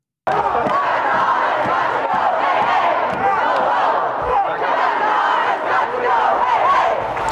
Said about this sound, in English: We have live footage of Democrats protesting at the office of Joe Biden. Ladies and gentlemen, breaking news. Protesters are at the office of Joe Biden right now.